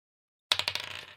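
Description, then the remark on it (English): A die clatters onto a hard tabletop with a rapid run of sharp, bright clicks that bounce quickly and fade over about half a second, following a moment of silence, as a constitution save is rolled in a tabletop role-playing game, coming up nine. No one speaks. “For a, you know, it's more fun if you roll it.”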